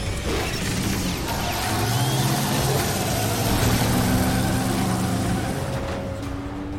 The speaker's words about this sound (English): An instant after the car roared forward